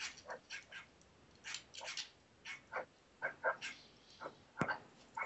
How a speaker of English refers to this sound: Somebody shut that damn dog up.